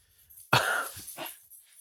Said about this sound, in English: see, there's the dogs again. Oh my gosh. You're getting crazy. Crazy.